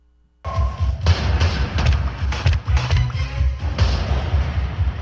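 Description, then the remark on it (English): A rapid barrage of loud bullet impacts splatting wetly into the liquid-metal T-1000 in Terminator 2, each hit a heavy, squelching thud, piling up over several seconds with no speech. “It's bullets hitting the T-1000.”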